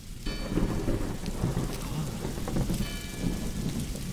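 Steady rain patters down at night in southern France while a deep thunderstorm rumbles in the distance, a low continuous roll that swells and fades under the hiss of the downpour.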